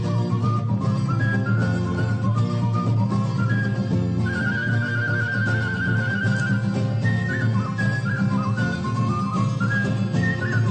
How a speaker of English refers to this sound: not only was he a great guitar player and a singer, but he might have been the greatest whistler to ever record an album. This is him playing the guitar, and then that's him whistling. That's pretty good, right?